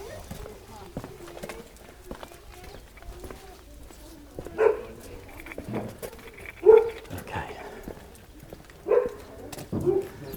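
Several short, sharp barks or yelps ring out at irregular intervals from the pet dog Yoru as it barks at some Labradors, with scuffling and footstep-like sounds in between and a fairly busy background.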